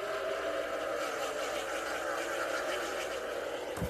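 A dense, continuous roar of many stock car engines at the start of a race at Pocono as the safety vehicle makes the hard left turn, steady and loud without a break, blending into one broad wall of engine noise with no voices.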